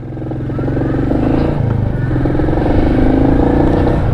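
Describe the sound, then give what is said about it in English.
A car engine hums steadily and loud after being shifted into gear, its pitch climbing smoothly as the vehicle accelerates, with a low rumble and slight rattle underneath and no voices. “Oh, got it in gear.”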